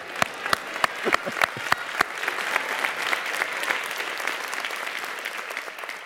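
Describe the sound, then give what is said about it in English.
A crowd of people clapping, starting with several loud, sharp individual claps that quickly swell into steady, dense applause, which continues at a fairly even level to the end. “That's worthy of a clap.”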